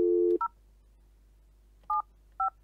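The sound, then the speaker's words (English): A steady tone breaks off, then three short, clear keypad beeps follow at uneven intervals, each a crisp two-tone chirp of a phone being dialed, fairly loud with nothing else around them. “Right, let me buzz this geezer.”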